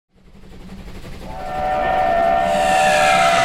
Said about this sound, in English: Welcome aboard the Transcontinental Terror Express, a special run on the Mutual Audio Railroad Network. Get your tickets ready.